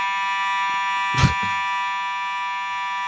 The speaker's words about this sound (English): a fire alarm here at our GPP studio